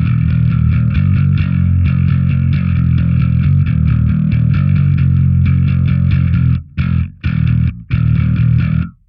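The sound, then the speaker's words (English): A distorted, heavily compressed electric bass, with its bridge pickup blended in and both distortion and compressor on, plays a steady run of gritty, buzzing notes at an even loudness, then breaks into a few short, choppy stabs near the end. “Let's blend in that bridge pickup. You get like so many different sounds in here. With the bridge pickup, with the distortion on, compressor on.”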